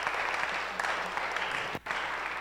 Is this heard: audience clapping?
yes